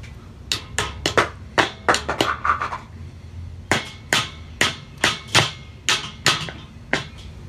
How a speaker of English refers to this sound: Now we gotta put on these little doohickeys to keep the wheel on with the hammer.